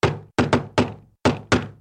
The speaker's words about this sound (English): One day, there was a loud knock on the door.